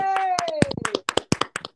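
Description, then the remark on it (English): A small group claps for Dane Baptiste in a quick, uneven burst of sharp, loud claps lasting nearly two seconds, with a drawn-out vocal cheer sliding downward at the start. “Round of applause for Dane Baptiste, everybody.”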